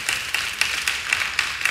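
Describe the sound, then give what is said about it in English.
An audience claps together in a steady, even rhythm, roughly four bright claps per second, with the crowd's clapping blending into a continuous hiss between beats. No one speaks. “I don't want to, yes, go ahead and clap.”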